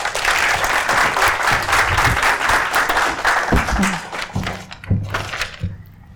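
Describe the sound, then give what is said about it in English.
An audience applauds a guest in a steady, dense wash of clapping that thins out toward the end, with a few voices and low murmurs emerging as it fades. “So a round of applause for our guest,”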